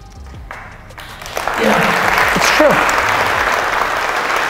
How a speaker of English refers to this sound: I know it's cool being here, it's true, thanks for the claps,